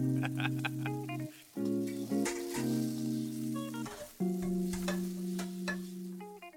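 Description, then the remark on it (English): Food sizzles and crackles as it fries, with sharp pops scattered across several seconds over a steady low hum; loud and close, with no talking. “Is it sizzle time? You know it. Sizzle.”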